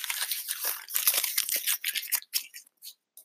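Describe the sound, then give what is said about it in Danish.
Crinkly paper rustling and crumpling as it is pulled from an inside pocket, a dense burst of dry crackles that thins into a few separate scrunches near the end, with no voices. “Det lyder som papir fra inderlommen.”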